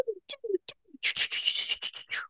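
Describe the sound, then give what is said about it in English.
Someone imitates a water gun with their mouth: a few short, low whistling chirps and pops, then a rapid run of loud, hissing spray-like bursts pulsing in quick succession. “But don't need to now because you made water gun sounds.”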